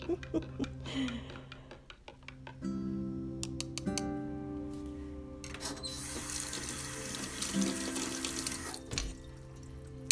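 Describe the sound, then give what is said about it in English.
Water pours steadily into a coffee cup of Nescafe with a little cream and sugar, a continuous stream that swells louder partway through and runs for several seconds, with a few light clinks near the start and no talking. “Oh, I love the sound of the water as it pours onto my nice cup of Nescafe with my lot of bit of cream and my lot of bit of sugar.”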